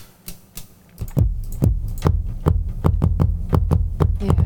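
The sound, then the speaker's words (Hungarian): Sharp bursts of full-stereo white noise, two noise sources on the left and right, pulse in a steady, quickening rhythm, each transient ending on a small, deep kick-drum thump, building into a dense electronic groove with a low hum underneath. No one speaks. “És annak a vége ez a kis lábdobocska.”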